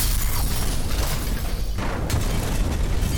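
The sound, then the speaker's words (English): Heavy, earth-shaking booms of train cars crashing into the sides of a ravine and the valley bottom merge into a continuous loud, deep rumble with grinding crashes on top, overwhelming, with no voices. “And a rhythmic sequence of earth-shaking booms began to ring out from the pits of the ravine, as the train cars began to strike with frequency into the sides and into the valley bottom.”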